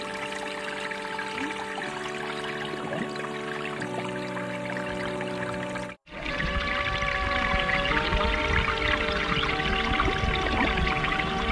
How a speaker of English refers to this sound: it's sampled from a documentary called The Falls. The sound at the very beginning, it sounds like river or something like that. It's a very like watery sound.